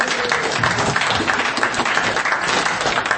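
A crowd applauds steadily, a dense wash of many hands clapping at once, loud and sustained for the whole stretch without pause or any voices breaking through.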